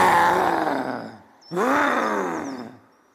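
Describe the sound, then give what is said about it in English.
A man with raised hands lets out two loud, drawn-out roars to scare away an animal, the second following a brief gap, his voice imitating a wild animal's bellow, forceful with no other sounds around it. “He raised his hands and let out a huge roar to scare away the animal.”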